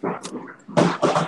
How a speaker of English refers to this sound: Is there a dog or something? Oh, okay. Yeah, it's a dog. He messed with the trash can.